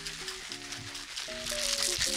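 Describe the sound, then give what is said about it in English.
A drink of Jameson and Eggo waffle liquor is shaken in a ginormous shaker, a steady hissing, sloshing rattle that continues throughout and grows slightly louder, with a faint tonal hum underneath. “We're going to shake this up. In the ginormous shaker.”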